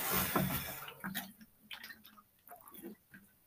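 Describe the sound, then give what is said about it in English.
Quiet sipping and swallowing of water, with soft wet clicks and little gulps after a brief rush of breathy noise at the start. “Drink a little water.”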